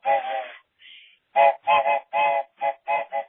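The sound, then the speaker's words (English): A voice imitates a train whistle: a long tonal call and a fainter one, then a quick rhythmic series of seven short, loud, fairly high-pitched hoots with no other sound. “Choo-choo. Train alert. All aboard.”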